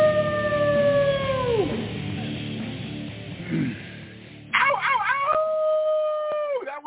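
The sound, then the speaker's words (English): A person lets out long, loud howls, sustained wavering cries that slide down in pitch, with a brief pause and then a second howl rising and holding, on a Thursday night. “giving you a big hyper slot howl here on a Thursday night”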